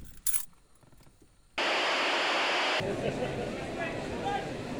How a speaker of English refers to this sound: And it's raining.